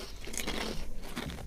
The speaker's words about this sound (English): So, crinkle cut and gravy flavour. So, have you had these before? No. Okay, well, he's gone for the crunch test. What are we giving the crunch out of 10? Crunchy.